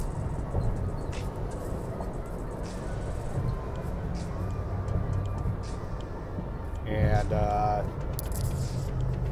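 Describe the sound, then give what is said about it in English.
A big truck rumbles past a small sedan with a steady, heavy low roar of engine and road noise, and a brief tonal whine rises out of it near the end. A voice speaks briefly. “I'm just trying to get away from this big ass truck, because I'd be getting leery with these big ass trucks.”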